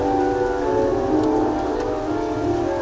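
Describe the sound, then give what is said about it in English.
Steady, dense rain hisses throughout over a soft low rumble of fading thunder, with sustained piano notes ringing underneath; no voices. A field recording. “Thunder is dying down, but it's still raining.”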